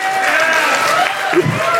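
An audience claps and cheers in a steady, dense burst of applause, with a few whoops and raised voices rising over the continuous loud patter of hands.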